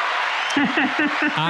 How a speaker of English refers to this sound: So I applaud you. Where's my applaud button? There it is.